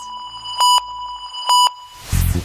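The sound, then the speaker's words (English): A quiz buzzer sounds twice during the fastest finger round of a Harry Potter quiz, each a short, loud electronic beep over a steady tone, followed by a brief noisy burst at the end. No one speaks. “Fingers on the buzzers.”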